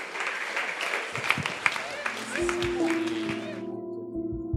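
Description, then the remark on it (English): A church audience claps steadily in a dense, sustained burst of applause for people coming from their seats to the front, with voices and cheers mixed in, while low organ or keyboard tones rise underneath toward the end. “Give them a big round of applause as they make their way out the front.”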